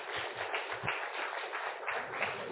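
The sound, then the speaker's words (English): A crowd applauds steadily for a speaker who has just been introduced, a dense, continuous wash of many hands clapping at once that holds an even loudness from start to finish with no voices over it. “Can we give him a round of applause?”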